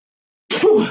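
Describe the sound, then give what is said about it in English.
A single loud sneeze caused by allergies bursts out suddenly after a moment of silence, a sharp explosive blast that trails off briefly with no talking around it. “Sorry, I'm going to sneeze.”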